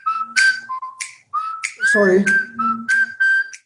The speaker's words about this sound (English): Sorry, my telephone was ringing. Very exciting melody, though.